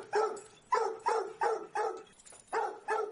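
A dog barks repeatedly in a steady rhythm, about seven sharp, fairly loud barks with short pauses between them, no voices present.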